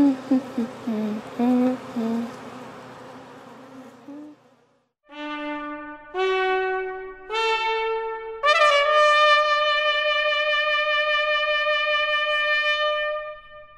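A dense, wavering buzz of honeybees in a bee yard fills the first few seconds, then gives way to bright sustained musical tones that step upward in pitch and ring on steadily.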